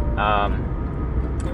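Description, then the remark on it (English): Steady low road rumble fills a car interior throughout as the speaker drives on a commute, with a brief tonal, voice-like burst near the start and a faint high blip toward the end. “And in my mind, as I'm driving here in the car, you're right here with me.”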